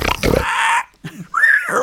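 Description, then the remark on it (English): A pig lets out loud, harsh squeals and grunts, two raspy bursts separated by a short pause, the second rising into a shrill, distorted squeal. “Pigs are so noisy that they peek and they distort the microphones. They constantly just scream into it.”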